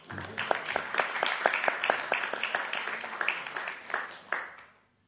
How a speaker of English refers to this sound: And if you did go out on Sankirtan during December, can you give a round of applause to those who didn't? Because next year, they will.